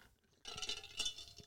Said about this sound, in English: Let me take a sip for Dak Prescott.